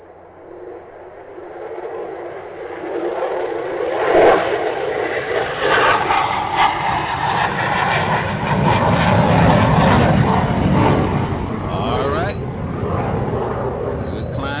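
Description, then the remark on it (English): An airplane taking off: a steady, loud engine roar that builds into a deeper, heavier rumble as it climbs, with a faint murmur of voices underneath. “Well, let me get this big iron bird on up off the ground.”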